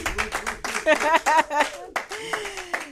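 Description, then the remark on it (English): An audience claps steadily for about three seconds in honour of veterans, a dense run of sharp, crackling hand claps, with voices whooping and calling out over the clapping. “And he's also served in our armed forces, so we're going to clap it up for veterans as well.”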